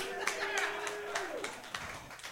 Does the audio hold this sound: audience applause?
yes